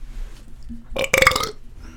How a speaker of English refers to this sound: We just hit a … in the burp.